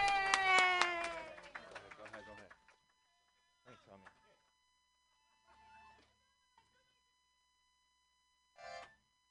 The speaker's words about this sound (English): Your next comedian, he has an accordion. He also tells very funny jokes. Clap your hands in a wild slappy-like motion for Josh Kahn! Yay!